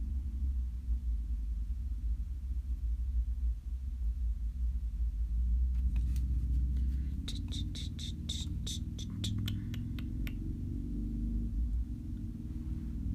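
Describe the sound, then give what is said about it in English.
A motorcycle's deep engine rumble drones steadily, swelling slightly midway as it passes, while a quick run of sharp, high-pitched clicks or chirps sounds over it for several seconds. “A motorcycle.”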